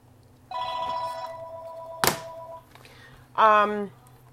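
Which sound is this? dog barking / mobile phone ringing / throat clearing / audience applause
mobile phone ringing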